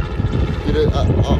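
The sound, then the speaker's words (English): A helicopter passes overhead again, checking on the people below, with a loud, steady low rumble and rushing, wind-like noise. Muffled voices can be heard beneath the engine. “There's our helicopter again, eh? Yeah, it's checking on us.”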